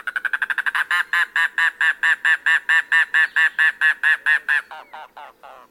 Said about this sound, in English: There lurks a more secretive bird in the Everglades and Florida Keys, the mangrove cuckoo. Rarely seen, it sings sporadically in winter, but when it does, you'll know it.